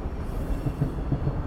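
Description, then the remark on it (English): A New York City subway 6 train rolls along toward 14th Street: a steady low rumble with faint rhythmic clanks in the lower range and a continuous droning roar, with no voices. “Nico hopped on the 6 train to 14th Street in New York City”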